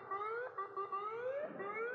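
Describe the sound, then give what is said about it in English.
A siren wails steadily with sweeping, rising tones and strong harmonics, continuous and fairly loud for the whole stretch, with no talking over it. “Yeah, I hear sirens.”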